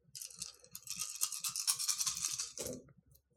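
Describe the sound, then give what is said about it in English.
Eight dice rattle and clatter in a steady, busy shake for a few seconds, ending in a brief thud as they spill out, moderately loud with no voices; the tabletop game roll gives zero successes. “I rolled 8 dice. And got 0 successes.”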